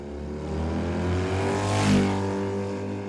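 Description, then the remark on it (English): A BMW motorcycle engine drones steadily, then swells louder as it revs and accelerates past, with a brief roaring peak before settling back to a strong hum, at an apartment in East Austin, Texas. No voices. “on May 11th, Colin Strickland, a professional cyclist sponsored by Red Bull, picked up Wilson on his BMW motorcycle at an East Austin apartment where she was staying with a friend.”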